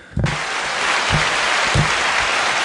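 A crowd bursts into applause that starts abruptly and holds steady, a dense wash of clapping with a few low thumps underneath, moderately loud and sustained throughout.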